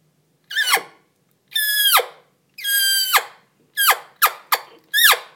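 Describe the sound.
A mouth-blown diaphragm elk call imitates cow elk mews to call in bull elk: six loud, high squealing notes, each sliding sharply downward in pitch, the first three evenly spaced, the last three shorter and quicker, with no talking.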